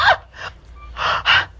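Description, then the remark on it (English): Heavy, breathy gasps, four quick airy bursts of breath in a ragged rhythm, with a brief pause in the middle and no talking. “Breathing heavy.”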